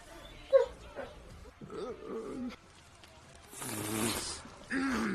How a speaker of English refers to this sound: The dog barking in the background makes this perfect.